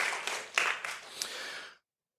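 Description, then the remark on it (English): A brief burst of audience clapping, a fairly soft wash of many hands with a few sharper claps, lasting under two seconds before cutting off abruptly. “You can clap for that.”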